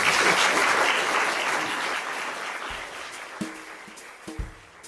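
Sustained applause from an audience for the guests, a dense wash of clapping that stays loud before gradually thinning, with a few sharper individual claps standing out near the end.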